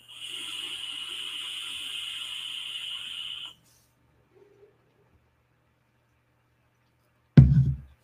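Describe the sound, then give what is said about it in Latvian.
A vape tank whistles airily through its six small round airflow holes at the bottom during one steady draw of about three and a half seconds. Silence follows, then a single short low thump at the end. “Viņam tā skaņa vienkārši, man liekas, es domāju, ka vairāk svilpo, jo viņam ir tie apaļie caurumiņi apakšā gaisa padevēji.”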